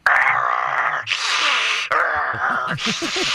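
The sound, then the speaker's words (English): A person imitates the growling and breathing noises heard from their crawl space, thought to be a bear, alternating harsh, breathy inhales and exhales with low, rumbling growls and grunts, loud, in a steady rhythm for a few seconds. “Yeah, kind of a growling and breathing like a”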